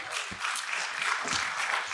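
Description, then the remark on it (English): An audience breaks into steady applause as the Bible book of 1 Samuel is announced, many hands clapping together in a dense, even patter that holds at a moderate level without letting up. “It's always good to hear people clap when you announce a book of the Bible.”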